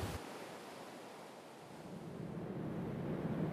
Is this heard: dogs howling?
no